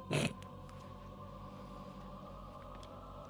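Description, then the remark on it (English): A single short, loud, raspy fart noise bursts out at the very start, then gives way to a steady low hum with no talking. “Fart noises.”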